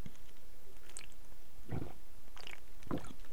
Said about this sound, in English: Take a swig of water, because I've been talking for 20 minutes and my damn voice is sounding like crap.